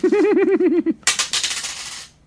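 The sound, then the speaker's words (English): A wavering, warbling tone gives way to dice, including a four-sided die (D4), clattering and rattling across a hard surface for about a second, a bright flurry of rapid clicks that quickly settles; the D4 lands on 4. “Roll a D4. Okay, hold on. I swear to God, if this one comes up as a 1, I'm throwing these dice away.”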